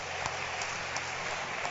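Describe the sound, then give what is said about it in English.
A church audience claps steadily for the lady pastor serving as MC, many hands producing a dense, continuous patter of applause with a few sharper individual claps standing out at a moderate, even loudness. “A better hand clap for our lady pastor, our one and only MC.”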